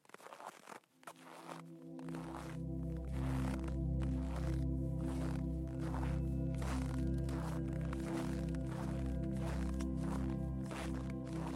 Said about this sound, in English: You hear the thick snow crunch beneath your boots as you walk.